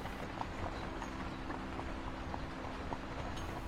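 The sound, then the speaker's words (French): Hooves of draft horses pulling a carriage over snow clip-clop in a steady, even walking rhythm, several beats, over a continuous low rumbling background. “Ces chevaux sont des chevaux de trait.”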